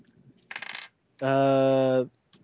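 A short burst of dice clattering across a table, followed by a loud, steady buzzing tone that holds for nearly a second before cutting off, with quiet background between.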